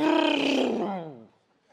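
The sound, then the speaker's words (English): A voice imitates a speeding car roaring past on an expressway, a loud, strained vocal rumble that drops in pitch and fades away after about a second. “That you're driving down the expressway one day, and you're going just a couple over, and this maniac comes roaring down the road.”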